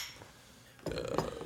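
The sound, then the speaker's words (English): After a near-silent stretch, glass bottles clink and clatter together in a short burst as glass is sorted for recycling in a comedy sketch of Boba Fett sorting his recycling, with one brighter knock standing out near the end. “Let's see. Glass.”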